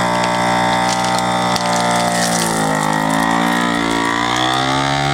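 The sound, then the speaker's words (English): A vacuum sealer's motor drones steadily with strong harmonic tones, the pitch dipping and curving midway as the pump labors to draw the air out around a piece of chicken in the sealing chamber before sealing. No one speaks over it. “Taking out all the air. Sealing.”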